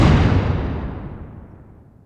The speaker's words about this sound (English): The cow rocked onto her side, legs flipping in the air as the gunshot's roar reverberated across the pasture.